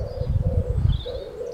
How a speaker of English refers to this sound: Kill the pigeons.